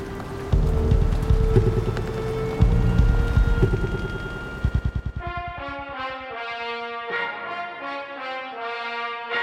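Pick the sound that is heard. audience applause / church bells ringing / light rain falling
light rain falling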